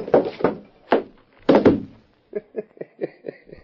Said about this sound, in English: Did you see me nail him on the chin? Sure clipped him square.